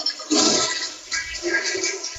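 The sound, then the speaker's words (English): A toilet flushes away a killed bug with a loud rushing surge of water that swells quickly, then settles into a steady gurgling drain. No one speaks over it. “I just had to kill a bug I found, so I got to throw it in the toilet.”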